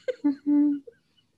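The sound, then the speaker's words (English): A female pet dog snoring: two brief snuffling grunts, then one longer, droning, nasal snore with a buzzing tone, fading to a faint snort and quiet. No one speaks. “My dog is snoring in the background right now.”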